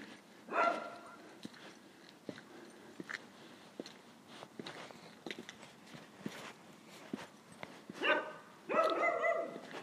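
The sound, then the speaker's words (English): A small Cocker Spaniel barks once near the start, then twice more in quick succession toward the end, with soft footsteps and small clicks filling the quiet gap between. “They have a dog, yeah. Little Cocker Spaniel, I think.”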